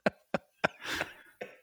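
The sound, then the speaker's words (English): A fit of coughing from a cold: three quick, sharp coughs in a row, then a longer, raspy hacking cough and one final shorter cough, with no talking. “My apologies for the cough.”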